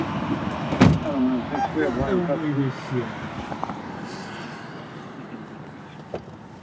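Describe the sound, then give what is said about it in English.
A sharp thump like a car door, followed by rustling and shifting as a man settles into the back seat of a car, with muffled voices talking and a faint click near the end. “Now he's getting in the car.”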